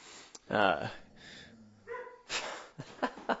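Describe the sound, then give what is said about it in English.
Dogs bark in a few loud, uneven bursts: one long, strained bark, then quieter whining tones, then a quick flurry of sharp barks at the end. “That's what dogs are doing every time they're barking.”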